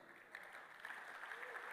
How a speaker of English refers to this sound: You're clapping.